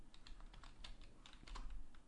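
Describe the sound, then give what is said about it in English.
Rapid, irregular typing on a computer keyboard, a quick run of soft clicky keystrokes, with no voices over it, as someone uses keyboard commands to get around without using a mouse. “And I sometimes don't remember all the keyboard commands to get around without using a mouse.”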